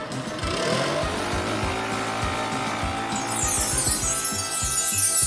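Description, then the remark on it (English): A leaf blower runs loudly and continuously in a kitchen, used to blast sprinkles onto 300 tiny doughnuts, its buzzing motor whining over a rushing hiss of air that grows stronger near the end, with no voices. “Oh, get the leaf blower.”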